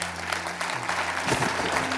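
An audience breaks into steady applause, giving God praise for community, a dense wash of many hands clapping at an even level throughout, with a low sustained hum running underneath.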